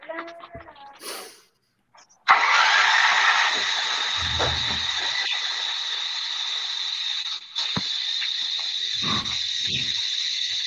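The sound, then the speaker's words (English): After a brief murmur of voices and a short pause, a small two-cycle generator engine, choked out and being cranked again to run without seafoam, catches abruptly and roars into a loud, steady, buzzing drone that runs unbroken to the end. “Let's Fix a Generator”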